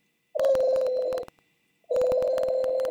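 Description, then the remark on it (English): A telephone rings on the line as a call is placed to a synagogue office: two long, buzzy ringback tones separated by a short pause, clear and steady, heard as if through a handset, with no voices. “Didn't the phone ring different those days?”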